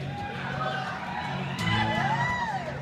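A large crowd cheers and whoops continuously, with scattered high shouts and rising yells over a steady roar that swells a little partway through.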